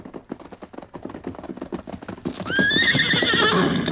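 Steady clip-clopping hoofbeats of the horse Scout plod along for a couple of seconds, then a loud, high, wavering horse whinny rises over them and holds to the end.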